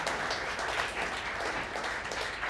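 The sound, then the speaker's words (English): An audience applauds steadily, a dense, even wash of many hands clapping at a constant level for a couple of seconds with no voices over it. “Don't clap it up.”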